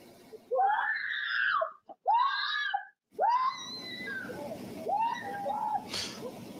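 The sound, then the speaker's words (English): A 45-year-old woman's loud, high-pitched screams ring out in several long bursts during a daylight street robbery, after a vehicle approached her as she walked down the street, just before 3 p.m. on a Sunday on the 2900 block of North Niseely, recorded by a Ring video camera; tapering into frantic wailing cries over faint outdoor background noise. “And that woman is screaming after walking down the street when that vehicle approached her.”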